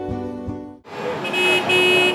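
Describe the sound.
Vehicle horns blare in long, overlapping blasts during a protest in downtown Ottawa on a frigid night, one steady horn tone first, then a denser wash of honking and street noise, loud, with voices mixed faintly underneath.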